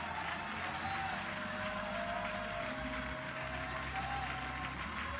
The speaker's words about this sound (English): One more time before you're seated. Yep, clap your hands. Yeah.